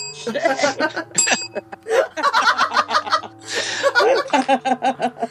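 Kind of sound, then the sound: signal or alarm, bell ringing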